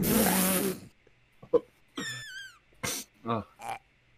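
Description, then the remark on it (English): A loud, raspy fart-like burst lasts under a second, followed by a short string of squeaky, wavering vocal noises and brief grunts. “Oh, I just farted.”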